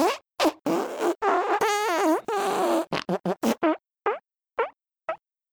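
A loud, drawn-out fart that wobbles up and down in pitch, followed by a quick string of sputtering toots and three shorter, fading blasts at the end. No one talks.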